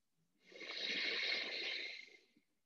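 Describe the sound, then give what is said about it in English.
A single long, deep breath, the last of several in a guided breathing exercise, drawn in and let out as a steady airy rush, swelling and fading over about two seconds with no talking. “One last breath.”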